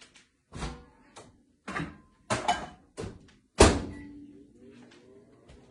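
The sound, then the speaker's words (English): A series of clunks and clicks, like handling and button presses, ends in a loud door thump, followed by a steady low hum as the microwave starts running for about a minute, heating a Nordic Ware Made in the USA Microwave Egg Muffin Pan. “All right, so I'm going to put it in the microwave and it's just about a minute.”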